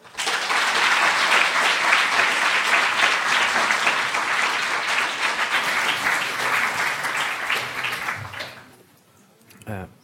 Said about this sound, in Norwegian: Gi ham en varm applaus.